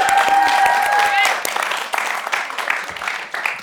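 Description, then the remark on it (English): A crowd applauds the author Dorothy with dense, steady clapping, joined at first by a sustained high whistle that fades after about a second, then the clapping carries on and thins slightly toward the end. “So can we give a round of applause for Dorothy?”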